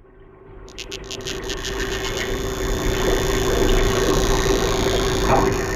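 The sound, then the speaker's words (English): Rapid, loud clicks from Danionella cerebrum, a half-inch fish living off the coast of Myanmar, made by drumming its cartilage and able to exceed 140 decibels, blur into a harsh, rattling buzz that swells in the first second and holds steady, with sharper separate clicks standing out early on. “Scientists have discovered that a species measuring just half inch can make a sound that is deafening.”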